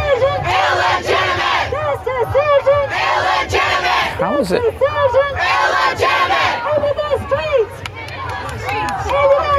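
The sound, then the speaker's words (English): A loud crowd at an appearance by AOC chants and shouts in waves, with bursts of rhythmic clapping rising and falling over a steady low rumble of voices; a single speaker's voice briefly cuts through. “Big clapping style there.”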